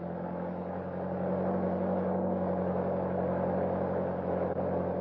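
A car engine runs steadily, a continuous low rumble with a droning hum as the vehicle drives along behind another car, no voices present.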